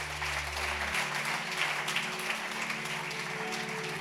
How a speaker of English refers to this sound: Are you here? Clap for Jesus if you are here.